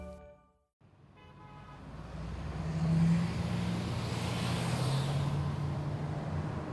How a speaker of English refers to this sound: I battle freeway traffic first thing every weekday morning. Traffic! I've got to cut across lanes of cars. Can you please let me over, kind person?